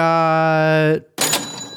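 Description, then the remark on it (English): Quiz-show sound effects played for a trivia quiz: a harsh, low, droning wrong-answer buzzer holds for about a second, then after a brief pause a bright, noisy correct-answer burst with a high ringing tone. “We've got some correct and incorrect sounds now.”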